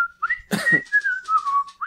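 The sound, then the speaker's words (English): A bright, cheerful whistled jingle from an erectile dysfunction TV commercial carries a bouncy melody of sliding notes, fairly loud, with a brief burst of breathy noise partway through and no talking. “Do you guys remember the erectile dysfunction commercials that had, like, the guy smiling and that weird whistling?”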